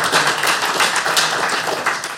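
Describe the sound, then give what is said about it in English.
A burst of applause from a crowd, dense overlapping claps filling the whole stretch at a steady, fairly loud level with no voices standing out. “Give us another round of applause.”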